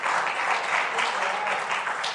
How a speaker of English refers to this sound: And when I think about our building, you can clap for that.